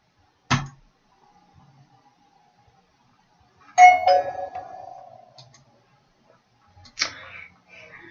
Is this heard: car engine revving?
no